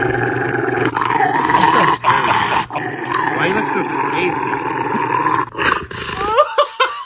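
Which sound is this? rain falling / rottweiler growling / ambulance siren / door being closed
rottweiler growling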